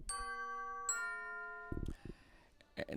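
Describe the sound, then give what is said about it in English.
A school dismissal bell chimes twice, two bright ringing tones that linger and slowly fade, followed by bursts of rustling, clattering noise near the end. “And that's the dismissal bell.”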